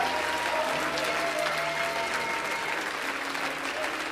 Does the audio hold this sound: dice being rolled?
no